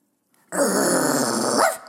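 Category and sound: animal, dog growling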